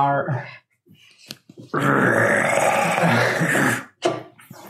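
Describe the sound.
A voice imitates an angry house cat: a short throaty sound, a pause, then a loud, harsh, sustained hiss-like yowl of about two seconds, ending abruptly with a brief grunt.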